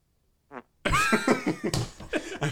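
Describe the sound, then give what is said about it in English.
A short squeaky blip, then a long, loud, sputtering fart sound effect with rippling bursts and a drawn-out buzzy tone, heard alone. “I think on our first ever podcast, we were talking about how amazing it would be if we were able to have fart sounds.”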